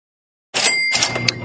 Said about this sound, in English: Next on the docket, we have a man who's ringing the bell a little harder than usual, given his Phillies just clinched a playoff spot.